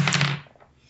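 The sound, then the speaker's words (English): A refrigerator holding only beer is pulled open with a loud, broad rattling whoosh over a low hum, lasting under half a second before fading into faint, scattered clinks and rustles. “Loud fridge noise coming at you.”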